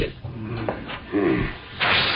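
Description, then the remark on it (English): Air from a tunnel rushes in through a pressure valve into an airtight sealed chamber, equalizing the pressure before going under the river, with a continuous, breathy hiss that wavers in strength, then surges louder and brighter for the final moments. “That's the air from the tunnel coming in through this valve, lady.”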